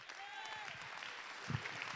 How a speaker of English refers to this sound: Come on, clap your hand.